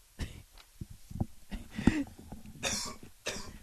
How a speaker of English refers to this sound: I can't cut this out. I'll be fine. You coughed less. I'll sit up more.